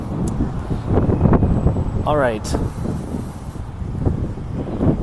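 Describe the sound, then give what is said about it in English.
Wind buffets the microphone with a steady, gusting low rumble that fills the whole recording, while a man briefly speaks partway through. “Hope it's not too windy in the microphone. It's pretty windy from my perspective.”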